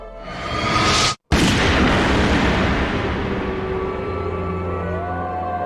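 An unsuppressed gunshot rings out in a scene where Snake points a gun at Wolf, loud and booming, with a brief dropout before a long, roaring echo that rumbles on and slowly fades. No voices are heard.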